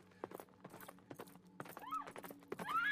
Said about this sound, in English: Her body struck the ground as the bewildered horse plunged madly on towards Newmanstown, and the unfortunate young lady screamed in vain for help.